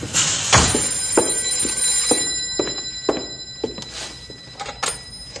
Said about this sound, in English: Oh, the telephone's buzzing.